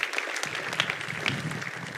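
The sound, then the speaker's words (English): An audience applauds a group of students on stage, a dense, steady wash of many hands clapping with scattered sharper claps standing out, holding at a fairly even loudness throughout with no talking over it. “So yeah, let's give them all a huge round of applause.”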